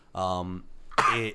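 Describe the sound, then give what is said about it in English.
A voice imitates two hacking, hairball-style coughs: a drawn-out voiced retch followed after a short pause by a harsher, breathier cough, both fairly loud. “It coughed with a hairball.”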